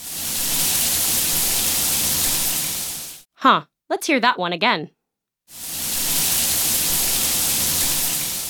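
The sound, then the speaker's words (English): A hot shower runs with a steady, dense hiss of spraying water, heard in two long stretches separated by a short pause where a person briefly speaks. “You can thank code if you take a hot shower or a warm bath in the morning.”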